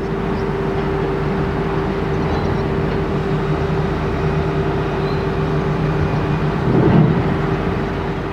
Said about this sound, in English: That is a field recording of a ferry boat with a diesel engine.